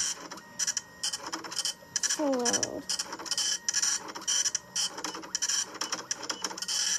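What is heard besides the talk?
printer printing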